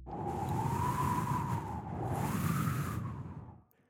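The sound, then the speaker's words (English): A voice imitates howling wind in two long, breathy swells, a steady whistling tone wavering gently up and down over the rush of air before fading out. “That's a very convincing wind sound.”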